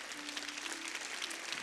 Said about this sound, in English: And so we say amen and elevate you one more time today. Would you help me, church, with one more hand clapping?